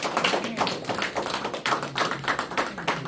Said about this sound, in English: Let's give the Lord a hand clap of praise for that really good word. Amen.